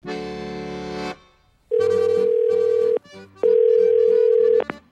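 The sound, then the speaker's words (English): A phone ringing on an outgoing call to a boat manufacturer: a short tone burst, then two long steady ringback tones separated by a pause, loud and alone with no talking. “I think the next step is probably just to call up as many boat manufacturers as humanly possible.”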